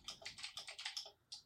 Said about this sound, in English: I have to do some typing here.